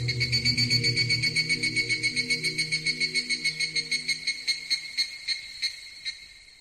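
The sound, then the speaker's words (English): A loud, shrill cicada buzz pulses rapidly and steadily, a dense insect drone with a low hum underneath that fades away as the rhythmic chirring slowly loosens toward the end. “I had only heard them because if you don't know what cicada is, just think of a really hot summer day and you just hear that loud buzzing noise.”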